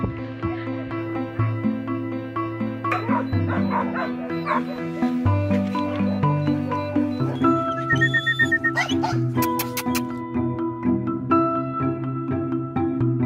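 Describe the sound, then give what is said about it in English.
Puppies yip and bark repeatedly in short, high-pitched bursts, with a few whimpers mixed in, all set over a steady layer of background music. “They go immediately to the puppies.”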